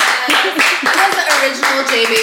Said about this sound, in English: We have an applause for that?